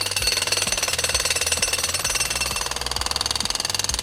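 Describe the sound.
A voice mimics a jackhammer with a loud, rapid, buzzing stutter of pulses, sustained without a break for several seconds, harsh.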